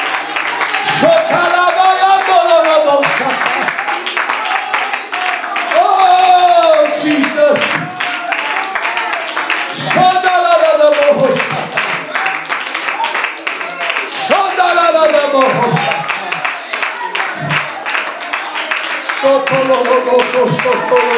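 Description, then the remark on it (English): An audience claps hands in a steady rhythm during worship, the claps sharp, while voices sing loudly over them. “Oh, let's clap our hands and worship Him today.”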